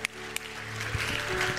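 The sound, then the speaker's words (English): Congregation applause given as praise to the Lord at a morning church service swells into a dense, steady wash of clapping, building in loudness after a couple of sharp opening claps, with a sustained low musical tone underneath. “Let's give the Lord a great big applause of praise this morning.”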